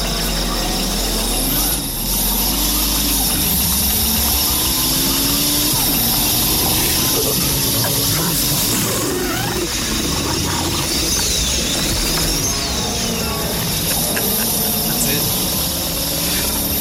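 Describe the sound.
A loud car engine rumbles steadily, its pitch rising and falling as it revs and then settles back toward an idle, with what sounds like voices mixed in underneath.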